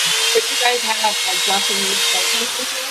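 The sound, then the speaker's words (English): A steady, high-pitched drilling whine runs loud and continuous throughout, with people talking underneath it. “All I hear is drilling.”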